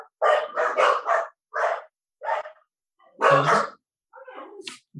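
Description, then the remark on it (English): Dogs barking in a quick run of sharp, loud barks, several clustered together, then a few scattered single yaps with brief silences between; no one talks. “Let me just discipline my dogs for a second, so just bear with me.”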